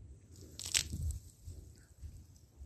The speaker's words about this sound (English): I don't have to tell you that, but let me take a sip.